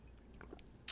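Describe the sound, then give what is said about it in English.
Someone drinks water: faint wet sips and a soft swallow, ending in one short, sharp click of the mouth or lips, with no talking. “That's me drinking some water.”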